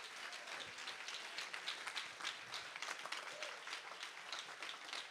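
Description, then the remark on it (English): An audience claps their hands together during a sermon in a dense, steady wave of applause that carries on throughout, with faint voices mixed into the crowd noise. “Clap your hands if you hear what I'm preaching today.”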